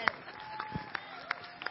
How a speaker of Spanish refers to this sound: Denle otro fuerte aplauso al que reina para siempre. Aleluya, aleluya. Si el aplauso es para el que reina y vive para siempre, tiene que ser mayor, con mayor fuerza, grito de jibo, vamos, grito de júbilo, eso es lo que quería decir.